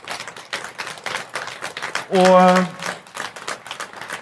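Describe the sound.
A small audience claps steadily for a few seconds, a dense crackling patter filling the room, with a short voiced call rising above the applause midway before the clapping carries on.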